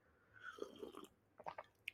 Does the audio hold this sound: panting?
no